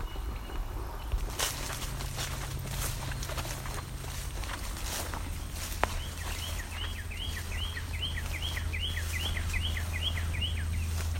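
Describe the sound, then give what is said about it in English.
A northern cardinal sings a quick run of about ten repeated, downslurred whistled notes, clear, over a steady low rumble and the rustle of footsteps. “Northern cardinal. It's one of the few things singing today.”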